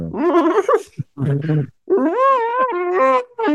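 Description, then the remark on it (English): A person imitates an elephant trumpeting with a few loud, nasal vocal bursts that swoop and waver in pitch, separated by brief pauses. “Oh, so you turn into an elephant, yes.”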